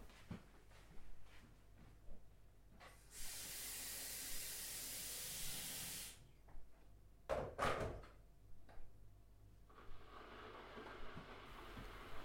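A steady, loud hiss of steam rushes for about three seconds, like a kettle coming to the boil, followed by a couple of sharp clicks and a softer, lingering hiss.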